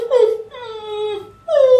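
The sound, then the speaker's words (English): Sad puppy-like yipping heard in the distance: a short high whimper, then a long drawn-out whine, then another cry, each sliding downward in pitch. Fairly loud, with no talking over it. “Sounds like a very sad puppy.”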